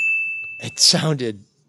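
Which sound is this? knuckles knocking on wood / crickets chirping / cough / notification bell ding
notification bell ding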